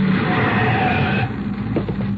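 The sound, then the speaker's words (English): A steady mechanical drone with a low hum and a whining tone as cable car motors are started atop a mountain in Switzerland, loud, easing slightly partway through with a few faint knocks. “I'm starting the motors.”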